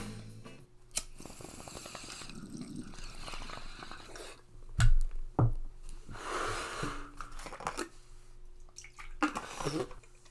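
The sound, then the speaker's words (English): Fresh coffee pours into a rooster cup in a steady, gurgling trickle, moderately loud, with a couple of sharp knocks of the cup or pot midway and faint background voices. “Coffee bong time. I'll pour a fresh one right now.”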